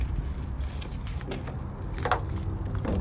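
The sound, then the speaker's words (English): Keys jangle and clink in short bursts, with low rumbling handling noise as a car with dogs locked inside is being opened; no talking. “The dogs have been locked in the car for like a half an hour. Okay, here we go. Let's open it.”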